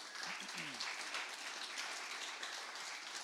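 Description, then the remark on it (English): A church audience applauds steadily, a dense wash of many hands clapping at an even, sustained level, with a few brief voice-like sounds at the start. “I preach every second week, never got a clap.”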